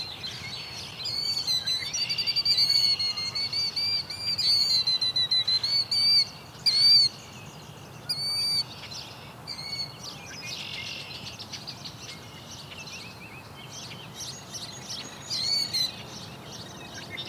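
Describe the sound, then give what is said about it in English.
A killdeer gives a persistent, vibrating distraction call while feigning a broken wing to lead people away from its nest: rapid, high-pitched trilling chirps that repeat almost continuously, with brief pauses. Other sharp calls are mixed in, and no one speaks. “Kind of vibrating sound the one is making, it's trying to feign a broken wing.”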